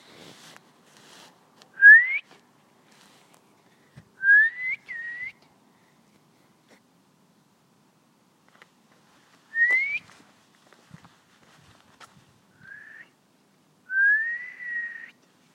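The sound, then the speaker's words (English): A person whistles to call a lost dog, in short, rising call notes, about five separate bursts spaced a few seconds apart, fairly loud and clear against near silence with no talking. “Oh, I have to blow the whistle, but I don't have a whistle.”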